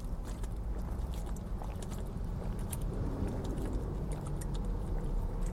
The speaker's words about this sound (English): Okay, that was good. Is it a 20-ounce bottle? Yes. I just drank about 8 ounces. I could have drank the whole thing.